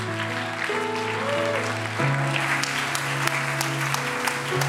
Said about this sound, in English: Why don't we just give God a huge round of applause for welcoming these people.